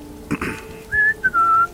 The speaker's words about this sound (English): Grab our whistles while walking. I whistle.